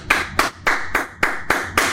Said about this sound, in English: Yeah, and Iowa did it, man. They got their points. Brian Ferentz. Round of applause to you, buddy. Round of applause, Brian.